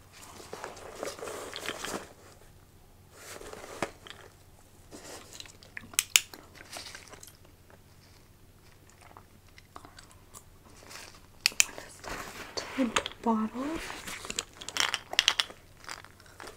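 Soft, wet gum chewing with irregular smacks and clicks, quiet and without talk, during an airport security bag check role-play, mixed with light rustling and handling noises as the bag's contents are inspected, over a low steady hum.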